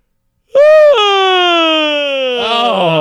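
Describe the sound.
A voice imitates a huge, exaggerated, cartoonish yawn: a loud, drawn-out vocal groan that starts high, slides slowly lower for about two seconds, then breaks into a wobbling tail.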